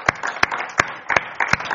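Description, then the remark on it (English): An audience gives the Lord a clap offering: a dense, steady wash of many hands clapping, with sharper, louder claps standing out at a regular beat roughly three times every second. “Let's give the Lord a clap offering tonight.”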